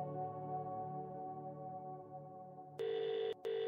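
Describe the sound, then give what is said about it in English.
A steady, buzzy phone ringback tone as an outgoing call to a Laguna Beach police detective rings through, cutting in loudly near the end with a brief gap, after a low sustained hum with no one speaking. “My next phone call is to Sergeant”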